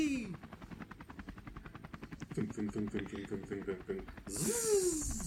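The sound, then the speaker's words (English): A helicopter following the speakers chops steadily and rapidly overhead, a fast rhythmic thumping that runs throughout, with a voice briefly heard at the start and again near the end. “I mean, the chopper's still on us.”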